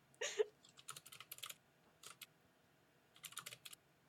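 Quick bursts of typing on a computer keyboard, fairly quiet, with a few clustered keystrokes, a short pause, then another flurry of clicks, as a bet of 50 gold on Astadair is typed out. No voices.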